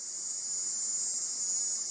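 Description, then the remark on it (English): A loud, piercing screech of a Jamaican cricket, recorded by members of the Havana embassy, holds steady and continuous throughout, a shrill high-pitched buzzing drone with a faint pulsing texture and no voices. “The problem with that is that several scientists who study cicadas stepped up to note that this was almost certainly the screech of the Jamaican cricket.”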